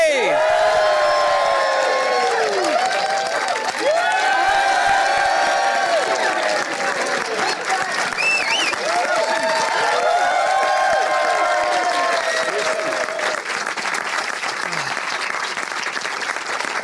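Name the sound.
audience cheering and applause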